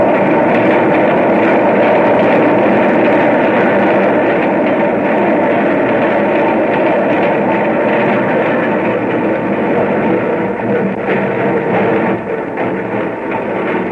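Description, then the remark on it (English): A subway train roars along with a loud, steady rumble and clatter that eases slightly toward the end as it slows to a stop at 72nd Street station. No one speaks. “Now the train was stopping.”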